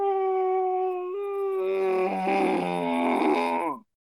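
A long, drawn-out voiced yawn lasting nearly four seconds, with a steady tone that steps up in pitch, swells into a rough, wavering groan and then cuts off abruptly.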